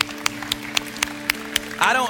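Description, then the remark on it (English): Sharp, evenly spaced hand claps sound in a steady rhythm, about seven in quick succession, before a voice breaks in at the end. “Can we just applaud real quick?”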